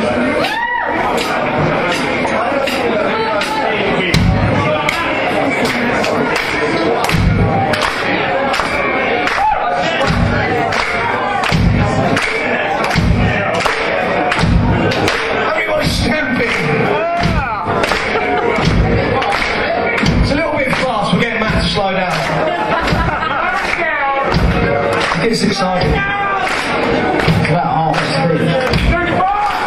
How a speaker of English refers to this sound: Stamp and clap. Obviously some of you got tricks, so you just stamp